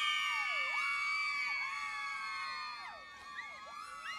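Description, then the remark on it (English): A crowd of girls screams continuously, many shrill voices overlapping with swooping, wavering pitches, loud and sustained for several seconds before easing slightly near the end. “I needed to hear the girls scream today.”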